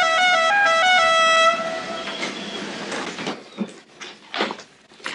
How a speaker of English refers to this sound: I put that horn on my car. My company car has that horn. I blow it all the time.